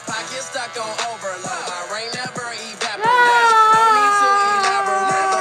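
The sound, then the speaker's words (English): A young girl wails and whimpers in choppy bursts, then breaks into a loud, sustained, high-pitched scream that holds steady for the last couple of seconds. “No, she was screaming.”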